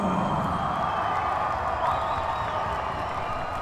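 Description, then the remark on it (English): A packed arena crowd roars steadily during fighter Jack Shaw's walkout, recorded on the night, a dense wall of cheering and shouting with scattered whoops and some applause, loud and sustained without letting up. “And we're going to play for you now some of the atmosphere and some of the crowd from the night.”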